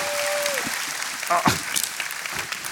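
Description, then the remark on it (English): Steady applause from an audience, a dense wash of clapping that holds at an even level throughout, with a brief tone fading early and a few scattered voices under it. “Ladies and gentlemen, clap your hands. Show your love.”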